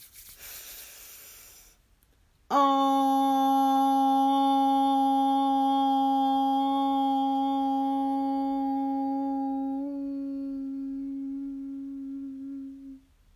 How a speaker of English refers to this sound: After we take a deep breath in, and then we'll end with the tone Om. So deep breath in, hands on your body, and Om as long as your breath allows. Deep breath in.